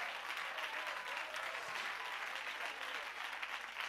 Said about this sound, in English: Clap your hands unto the Lord and give him praise.